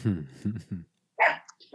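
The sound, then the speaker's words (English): A single sharp dog bark cuts in after a pause, following a man's voice, moderately loud. “And I remember, oh, sorry, I got a dog barking here.”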